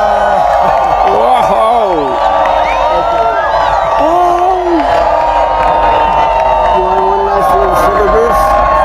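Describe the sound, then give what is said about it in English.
A large crowd cheers and shouts continuously as the light dims during an eclipse, a dense roar of many voices with rising and falling whoops and calls layered on top, loud and sustained throughout. “Yeah, oh, here goes the crowd.”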